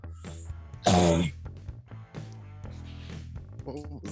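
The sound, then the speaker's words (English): A single loud cough bursts out sharply near the start, brief and harsh, with quieter voices murmuring before and after it. “What was that? That was a cough.”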